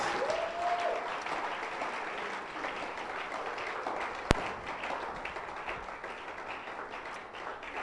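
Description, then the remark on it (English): A crowd claps steadily, a dense wash of many hands applauding at once, with one sharp louder clap cutting through midway and faint voices underneath. “Clap your hands.”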